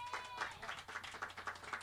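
crowd, audience clapping

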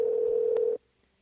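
signal or alarm, telephone ringback tone

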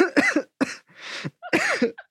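human body sound, coughing

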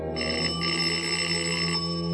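household object, doorbell ringing

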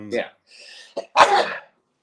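human body sound, sneeze into elbow

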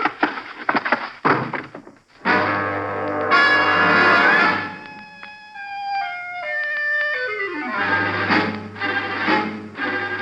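household object, door being shut

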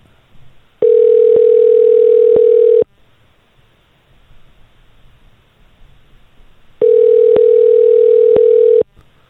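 signal or alarm, telephone ringing tone

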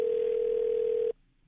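signal or alarm, telephone dial tone

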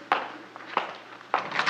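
household object, door being opened

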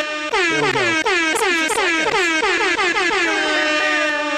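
signal or alarm, air horn blast

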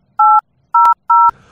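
signal or alarm, telephone keypad dialing tones

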